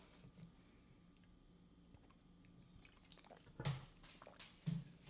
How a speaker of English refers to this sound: I'll drink some water.